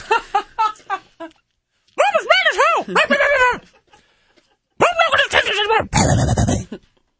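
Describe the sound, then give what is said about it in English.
A person loudly imitates a dog, letting out several rapid yapping barks and drawn-out, rising-and-falling howly yelps in a few bursts separated by short pauses. “And then as someone, people will be walking by, he's just like barking loud with like his little like vinyl mask thing on.”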